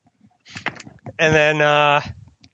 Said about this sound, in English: Hey, buddy, can you shut the door? Thank you. Please shut the door.